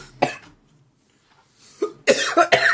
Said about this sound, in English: Sorry, your poop made my water go down the wrong pipe.